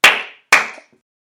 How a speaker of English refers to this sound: Clap once if you can hear me. Clap twice if you can hear me.